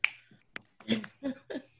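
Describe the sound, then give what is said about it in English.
Several crisp finger snaps ring out in an uneven sequence, a sharp first snap followed by a lighter one and then a few fuller, overlapping snaps, with no talking. “That's snapping.”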